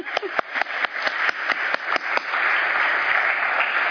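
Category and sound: crowd, church audience applause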